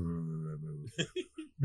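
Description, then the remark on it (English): A voice imitates a contented triceratops being scratched behind its frill, with a low, steady rumbling hum lasting almost a second, then trails off into a few short, breathy snorts or chuckles, fairly quiet. “You scratch it behind its frill and it goes.”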